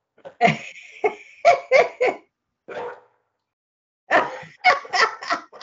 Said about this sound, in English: Is that your dog? Yes.